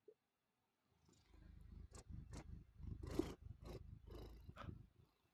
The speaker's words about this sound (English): Oh, he's so fluffy. I'm recording. Maybe I can see if I can give him a little meow. Ooh, that'd be great if I could get his purr, because this is a good mic.